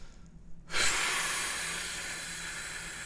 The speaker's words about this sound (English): And I just take a deep breath.